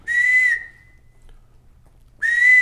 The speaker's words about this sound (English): But the blue quail equivalent of that is called a hawk call. Relatively inglorious relative to the majesty of the bobwhite. It's called the hawk call. It goes.